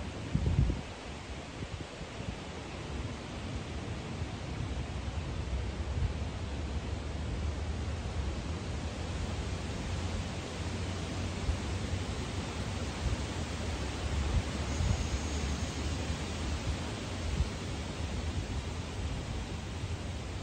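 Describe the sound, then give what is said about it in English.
A steady, gentle babbling brook flows without pause, with soft wind rustling through bamboo leaves, forming a continuous, even wash of sound with no voices. “The slight babbling of a brook.”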